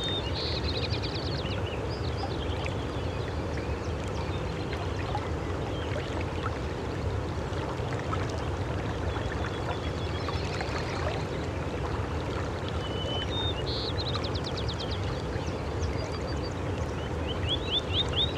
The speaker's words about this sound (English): There. It's a spotted sandpiper. Look at how it bounces as it walks. They live along the shores of the creek.